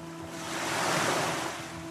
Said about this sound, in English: During the voyage, a violent storm erupted in the Irish Sea, threatening to overwhelm his ship and the accompanying flotilla